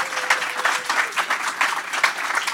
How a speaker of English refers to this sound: I would love for you to give them one more round of applause. Thank you. Thank you.